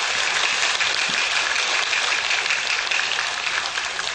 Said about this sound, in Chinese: 现在呢，我们就以热烈的掌声恭请上新下海师父开始。